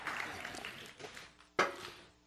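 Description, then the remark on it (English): A church audience claps during a sermon in a dense, steady wash of hand claps that swells briefly near the end, then fades out, with a few faint voices mixed in. “You can clap, I need a drink.”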